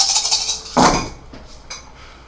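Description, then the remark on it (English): A rattling clatter of many six-sided dice tumbling together, as if rolling across a table, with a louder burst partway through and a few trailing clicks. “So yeah, just shit ton of dice.”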